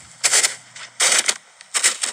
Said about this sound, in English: That's someone walking in snow.